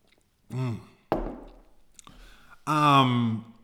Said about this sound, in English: Hold on, let me get another sip of this juice.